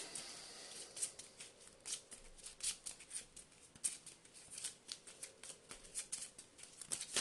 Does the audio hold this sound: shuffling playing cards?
yes